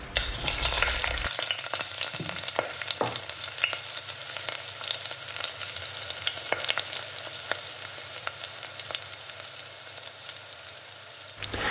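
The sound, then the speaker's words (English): Continuous crackling sizzle of an egg frying in hot fat, steady, with dense popping spatters throughout and no voices. “This is a cue now for us to take a final break, and you need to drop an egg into some sizzling fat.”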